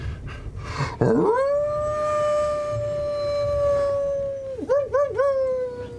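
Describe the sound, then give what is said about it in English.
Someone imitates a wolf howl, loud: a low swoop rises into a long, steady held note, then breaks into three quick wavering yodels at the end, with no other talking. “The howl is piercing, and at the same time resonant.”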